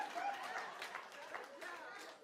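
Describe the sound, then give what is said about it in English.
Scattered, soft hand claps, a few uneven claps mixed with a murmur of voices and light crowd noise. “You got some nerve to be clapping up here.”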